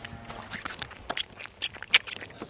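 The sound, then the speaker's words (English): A newborn calf that would not feed all day finally latches on and suckles on a bottle: quiet, irregular wet smacks and clicks with a few sharper squeaky sucks from the teat, in an uneven rhythm and with no talking. “One of the newborns who wouldn't feed all day finally latches on. A happy sound.”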